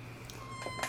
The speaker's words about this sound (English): Sorry, buddy. There's the kitten, Taquito. Meow.